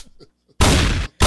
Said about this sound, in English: Like we need to hear one more gunshot in the city of Chicago.